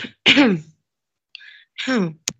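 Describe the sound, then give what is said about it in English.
Two harsh coughing bursts from a person with an itchy throat, separated by a brief pause, with a faint short sound between them and a sharp click right at the end. “You're coughing awfully a lot.”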